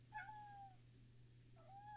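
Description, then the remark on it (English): A cat meows twice, two drawn-out, mid-pitched calls a second apart, over a steady low electrical hum, with no one talking. “Hello again, Cat.”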